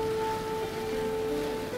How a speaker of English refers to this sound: I could hardly tell through the rain coming down like crazy.